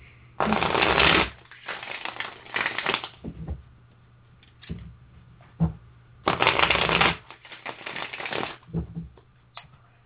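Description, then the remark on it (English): Crisp riffling of a deck of tarot cards, shuffled again during a reading in several bursts with short pauses between, each burst a dense papery flutter, heard alone without talk. “So pardon me while you hear the shuffling.”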